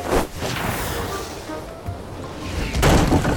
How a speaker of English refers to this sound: What was that? Who just crashed into my banana stand?